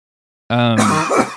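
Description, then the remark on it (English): A single loud cough, starting with a voiced, throaty tone and breaking into a rough, breathy burst, heard on its own after a moment of silence. “did you hear that cough just now, mm-hmm.”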